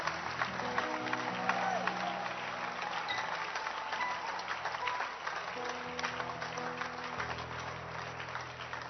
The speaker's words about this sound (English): Can you clap your hands? God bless you.